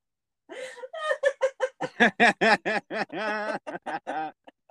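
A close, loud run of rapid, rhythmic chicken-like clucks from a human voice, a cackling laugh of about a dozen short bursts that speeds up and then trails off.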